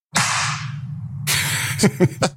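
A loud, sharp hand slap, used by a man to slate himself so a separate microphone can be synced with his camera, cracks out near the start and rings briefly, followed a second later by another burst and three quick, short smacks over a steady low hum.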